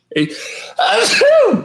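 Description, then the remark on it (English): A single loud sneeze: a breathy intake followed by a sharp, noisy burst that trails off into a voiced, falling tail. “Bless you.”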